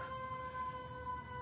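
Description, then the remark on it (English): An emergency vehicle siren holds a steady, sustained tone from outside, moderately loud and unbroken for the whole moment, with a low rumble of background noise and no one talking. “Why is every time we record, there's sirens or garbage trucks?”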